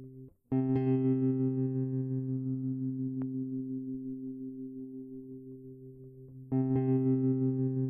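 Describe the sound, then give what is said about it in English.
A steady, buzzy electronic note in a song sounds and slowly fades, then after about six seconds a very long delay echo effect brings the same note back at full strength. No one speaks. “So as you can hear, that echo is very long.”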